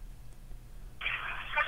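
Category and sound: signal or alarm, phone call ringing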